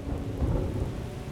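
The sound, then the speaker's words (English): A steady thunderstorm with lightning over the city of Argos: deep, rolling thunder rumbles low and continuous beneath a constant wash of heavy, stinging rain, with no voices present. “By midday, the world was a dim blue-gray haze, broken only by the occasional fork of lightning.”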